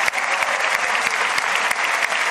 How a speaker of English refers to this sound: The entire House of Representatives stood up and applauded Markarova, who was visibly moved by the reaction.